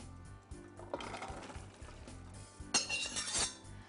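A little water splashes into a pot of vegetables for a hearty vegetarian dish, before it goes into the oven, in two short bursts, with light clinks of cookware around the pours and no talking.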